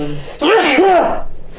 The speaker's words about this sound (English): God, that was brutal. That was a brutal sneeze.